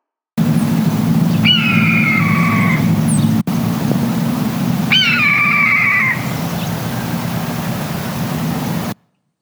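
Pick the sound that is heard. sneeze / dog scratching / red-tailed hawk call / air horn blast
red-tailed hawk call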